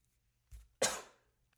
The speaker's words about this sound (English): Can't even fucking do a cough like that without people thinking you got Rona or something.